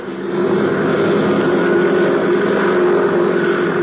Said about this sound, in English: A few miles away at the Curtis airfield, a young flight instructor was warming up his plane, preparing to take off.